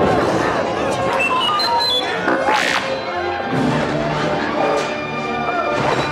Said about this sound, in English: But before they could attack, one of the Ewoks chopped through some vine ropes and released a pile of logs. The giant tree trunks crashed down on the stormtroopers.